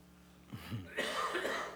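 A short, throaty cough, starting with a low rough catch and breaking into a harsher, breathy burst, heard alone and not very loud.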